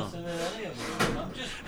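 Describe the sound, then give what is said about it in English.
A drawer of an empty new set of drawers slides and bumps shut with a short, sharp knock partway through, while someone talks over it and more faint sliding follows. “Hang on, I've got a new set of drawers. There's nothing in it.”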